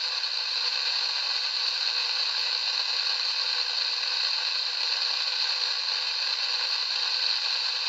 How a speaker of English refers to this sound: Right now, all we're getting is pure static. With some breaks, like something was trying to come through. That could easily be technical interference from the machines I have near me.